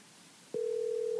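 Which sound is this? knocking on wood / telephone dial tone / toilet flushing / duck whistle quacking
telephone dial tone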